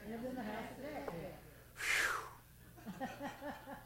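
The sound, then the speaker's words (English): One loud, breathy, forceful gasp of air, taken after a long recitation of a nursery rhyme, lands in a brief pause between stretches of a man's talking. “Now I'm breathing, right? Supposed to build your lung capacity.”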